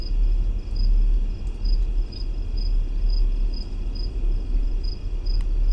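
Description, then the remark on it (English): A recording of the Windsor Hum: a deep, steady low-pitched drone rumbles continuously throughout, loud and unbroken, with faint, evenly spaced high insect chirps sounding above it. No one speaks. “That's the Windsor Hum. Isn't that awful? Imagine having to hear that all the time.”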